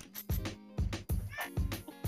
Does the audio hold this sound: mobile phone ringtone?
no